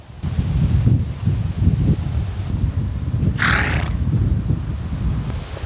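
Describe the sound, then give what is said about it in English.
Horses with heavy snorting and rumbling breaths throughout and one brief, higher neigh-like burst near the middle, against a rustling outdoor background. “Being accosted by horses is getting gone to your head.”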